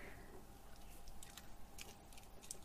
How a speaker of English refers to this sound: Yuck! I can hear you crunching it!